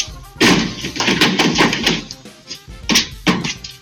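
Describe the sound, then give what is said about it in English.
A deer jumps over a car and lands in the bed of a pickup truck with heavy metallic thuds and bangs: a loud impact, scrambling clatter, then two more sharp knocks as it hops right back out and keeps running, loud. “It jumps like over a car, lands onto the side, into the back of the bed of this truck, and then hops right back out and keeps running.”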